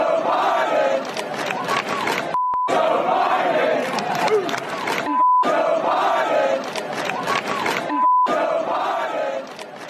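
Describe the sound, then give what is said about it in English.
A large, loud crowd chants the slogan "Let's go, Brandon" in a steady repeating rhythm, each phrase separated by a short silent gap marked with a brief electronic bleep. “As you can hear the chants from the crowd, let's go, Brandon.”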